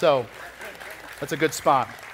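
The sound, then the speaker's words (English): An audience claps during a sermon in a soft, steady patter that runs throughout, while voices call out over it in a few short bursts. “Somebody wanted to clap.”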